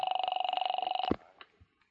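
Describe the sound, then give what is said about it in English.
A telephone number being dialed from a phone booth: a steady, rapidly pulsing buzz-like tone for about a second, cut off by a sharp click, then a few faint soft knocks. No voices. “As soon as she left me, I headed for a phone booth and dialed the first number she'd called.”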